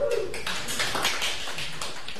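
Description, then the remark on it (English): A brief burst of applause from a group for the people who brought cookies, a dense patter of many hands clapping at once, steady and fairly loud for a couple of seconds. “Round of applause for the goodie bringers.”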